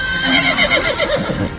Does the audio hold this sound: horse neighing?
yes